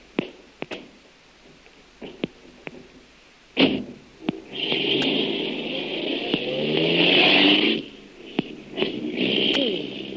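A few sharp clicks and a thud like a door, then a car engine catches and revs up, rising in pitch as it pulls away, fairly loud before settling.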